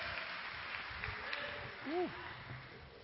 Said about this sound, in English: So let's give a big round of applause for my brother